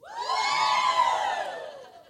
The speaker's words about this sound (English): Yeah, here's another way to get them to woo. You just go, LifeGate Youth.